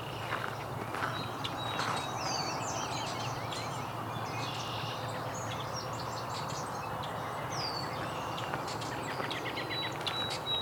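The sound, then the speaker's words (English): Many red-winged blackbirds call at once in a dense outdoor chorus, with overlapping trills and whistles of varying loudness over a steady wash of background noise and insects. “Lots of red-winged blackbirds.”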